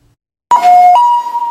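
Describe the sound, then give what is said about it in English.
An ambulance siren suddenly blares as the ambulance zooms by, its loud two-tone wail stepping from a high pitch to a lower one and back, with no voices. “An ambulance zooms by, its siren sounding.”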